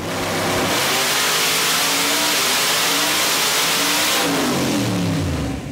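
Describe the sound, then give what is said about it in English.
A loud, well-sorted nitrous-boosted car engine revs hard and accelerates, its rising harmonic whine sweeping upward through gear changes, then dropping as the roar fades off, with no voices present. “Without doubt, the best cars you can watch are a well-sorted nitrous car. It's just like a bomb going off, isn't it?”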